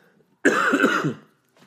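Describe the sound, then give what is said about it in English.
A single harsh, raspy cough from a person still getting over being sick bursts out, lasting under a second before trailing off into quiet, with a faint breath afterward. “Sorry for the coughing, guys.”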